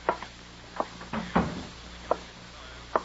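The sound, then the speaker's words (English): A door shuts with a dull thud midway through, surrounded by a few sharp wooden clicks and knocks spaced across otherwise quiet surroundings, with no voices. “Close the door, please.”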